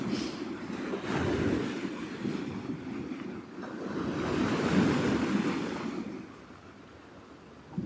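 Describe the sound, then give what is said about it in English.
Ocean waves wash steadily onto the shore, swelling into a louder surge around the middle before easing back, with a constant low rumble of surf and some breezy wind noise throughout. “Just feel the waves washing over, cleansing us.”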